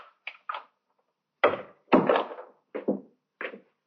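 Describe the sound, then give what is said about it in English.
A door opens at night in an empty club with a series of wooden clunks and thuds, a couple of light taps followed by heavier bumps, each separated by silence in an otherwise quiet space. “The door, Inspector. I heard it, Sergeant.”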